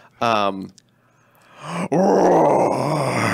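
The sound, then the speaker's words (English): A person imitates a roar with their voice: a short, tonal vocal burst, a brief pause, then a loud, rough, sustained roar that swells and holds to the end. “In this economy, you're paying $10 for a roar.”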